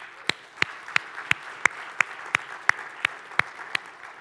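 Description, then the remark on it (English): An audience applauds in a church, with a steady, evenly spaced run of sharp claps standing out above a continuous wash of crowd clapping. No one speaks. “We applaud courage here at this church.”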